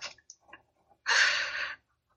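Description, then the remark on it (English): A dog snores softly nearby: a few faint snuffles, then one breathy, rasping snore lasting under a second. No one speaks. “Okay, my dog just started snoring.”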